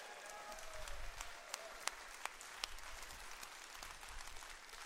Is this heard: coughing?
no